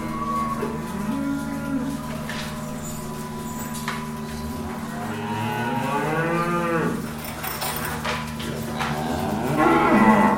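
Cows moo loudly, one long, drawn-out low call after another with rising and falling pitch, overlapping like a small herd calling continuously for about ten seconds.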